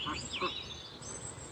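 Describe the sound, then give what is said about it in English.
Twelve chickens and seven ducks in a fenced area of about 150 square metres with a duck pond call out in a short burst of quacks and clucking chirps over a steady outdoor background hiss, the calls overlapping one another. “It's about 150 square metres and it's got 12 chickens in it. And 7 ducks.”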